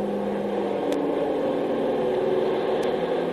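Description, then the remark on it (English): A Navy propeller plane flying over an island, its engine droning steadily throughout, a continuous low, rumbling hum with a faint wavering pitch and no voices. “That's the third Navy plane I've seen over the island in the last 24 hours.”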